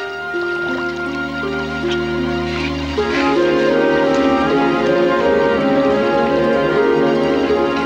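Water bubbles and gurgles steadily up out of the ground for several seconds, a continuous wet churning with a ringing tonal quality that swells slightly louder partway through. No voices are heard.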